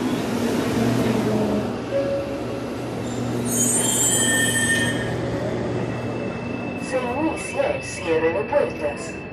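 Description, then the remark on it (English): A subway train rumbles through the Universidad de Chile subway station in Chile, its wheels letting out shrill metallic squeals midway, followed by a sustained high whine as indistinct voices echo faintly toward the end. “A few blocks down from Plaza Italia is where the whole mess started, in a subway station called Universidad de Chile.”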